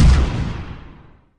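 A single loud cannon blast with a heavy low-end boom that rolls off and fades away over about a second, with no voices.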